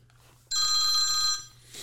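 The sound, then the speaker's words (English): A single telephone ring on a call from the Pac-12 commissioner to Rob Mullins, athletic director for Oregon: a bright, buzzing trill lasting about a second, loud, followed by faint line hiss. No one speaks. “So here's the last phone call that we found.”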